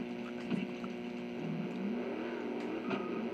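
A video game car engine hums steadily, with a few brief revs pushing the pitch up and back down. The buzzy, synthetic drone stays fairly loud throughout, with no voices.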